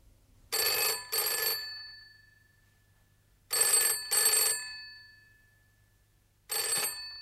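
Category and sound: signal or alarm, telephone ringing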